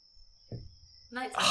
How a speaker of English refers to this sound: Crickets all up in this house. You're outside in the garden.